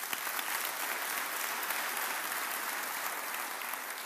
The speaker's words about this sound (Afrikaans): Kan ons hulle hande klap gee?